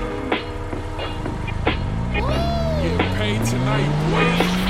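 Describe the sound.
A car engine roars and climbs steadily in pitch as it pulls away, with a brief squeal of tires midway and some indistinct voices in the background.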